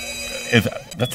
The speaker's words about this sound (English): And when you say that and the bell rings, what the hell kind of bell was that?